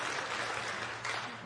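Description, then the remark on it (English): Audience applause fills the moment, a dense, steady wash of many hands clapping at once, sustained at an even loudness with no voices on top. “You can clap.”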